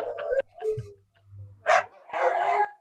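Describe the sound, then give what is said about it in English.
A dog barks and yips in a few uneven bursts, some drawn out almost into a short howl, with a faint low hum underneath. “this is going to be our new intro to the Got Fit in Japan show. Dog song.”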